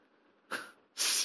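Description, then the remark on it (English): Two sharp sneezes in quick succession, the second louder and more drawn out than the first, with no talking around them. “The boy sneezed 7 times and opened his eyes.”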